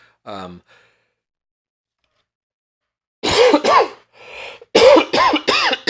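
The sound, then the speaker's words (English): A short breathy sound, a pause of silence, then a loud fit of several harsh coughs in quick succession, with no talking. “I didn't get to the cough button.”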